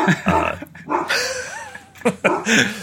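A dog barks in short, sharp bursts and lets out a drawn-out, wavering growl between them, fairly loud, with no one talking.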